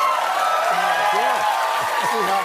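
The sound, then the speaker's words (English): A crowd cheers steadily, a loud dense wash of many overlapping voices with rising and falling shouts poking out, sustained for the full couple of seconds. “The funniest thing is these people cheering right now for that would be the maddest people if you...”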